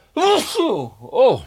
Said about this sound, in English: Oh, there. Fisherman's friend. Every time gets me. Like 30 seconds after I pop it in, gets me with a sneeze.